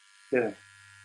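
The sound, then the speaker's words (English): A small electric nose and ear hair trimmer switches on with a brief, louder whirring burst, then settles into a steady, low-pitched buzz that hums on alone to the end. “It's electric nose and ear hair trimmer, which is an absolute godsend.”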